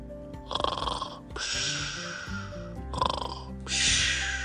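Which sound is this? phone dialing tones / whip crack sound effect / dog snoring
dog snoring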